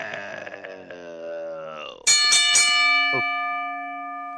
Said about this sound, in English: Ring the bell!